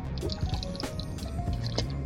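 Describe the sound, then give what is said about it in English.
Water is poured or sipped, with a run of small drips, splashes and gurgles over about two seconds and no voices. “This episode is brought to you by water.”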